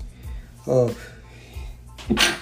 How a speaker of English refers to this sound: Bless me for that sneeze.